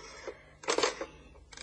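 A telephone being dialed: soft mechanical clicks, then a louder clattering burst of ratcheting in the middle and a brief rattle at the end, with no one speaking.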